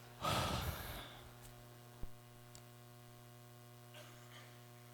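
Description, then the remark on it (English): A single loud, breathy yawn rises and trails off in the first second, as a preacher invites the audience to yawn along during a sermon on Sardis; then only a steady electrical hum remains with a couple of faint clicks. “Go ahead, would you yawn with me? Just get it out of the way.”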